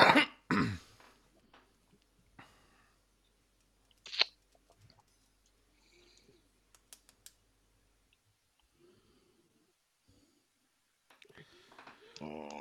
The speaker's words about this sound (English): It's all right, you've ruined it now. You're fucking blowing into the mic like, I don't know what.